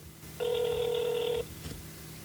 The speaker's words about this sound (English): you got me on the first ring.